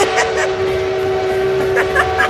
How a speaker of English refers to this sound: Oh, I hear that train a-coming. It's coming around.